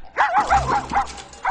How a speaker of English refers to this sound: The family dog.